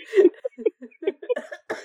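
A close, loud coughing fit: a rapid string of harsh, uneven coughs with short gasps between them, rising again at the end, with no talking.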